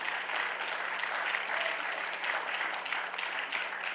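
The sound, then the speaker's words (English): A church audience gives God a hand clap of praise during an evening service, clapping in steady, dense applause that holds at an even level for the full few seconds, with no voices standing out above it. “Could you give God a hand clap of praise this evening?”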